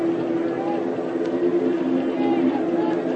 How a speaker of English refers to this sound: There's the drone of an airplane overhead.